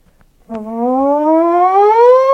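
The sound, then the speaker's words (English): A fire engine siren, from a fire engine rolling down the street, starts abruptly and wails loudly, its tone climbing steadily in pitch over a couple of seconds, with no voices heard. “Fire engine rolls down the street.”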